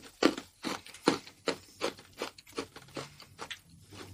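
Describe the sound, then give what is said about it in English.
Someone chews crunchy wafer candy, about a dozen crisp, crackling bites in a steady rhythm, loud at first and then softer, with no talking over it. “It sounds too hard to chew.”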